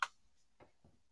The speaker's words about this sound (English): I don't know why that happened. I was like typing.